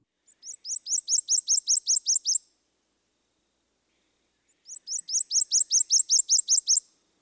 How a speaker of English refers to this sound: The prothonotary is large and heavy-bodied for a warbler, and also, unlike other eastern warblers, it nests in cavities, old woodpecker holes